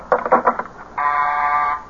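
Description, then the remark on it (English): A doorbell buzzer sounds: a quick run of short, choppy buzzes, a brief pause, then one long, steady, fairly loud electric buzz held for nearly a second, with no voices. “Oh, someone at the door.”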